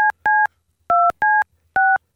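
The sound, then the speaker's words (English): Five crisp touch-tone telephone keypad beeps sound in quick succession as a call is dialed, each a short dual-pitched electronic tone with brief gaps between, clear with no talking. “Who are we calling?”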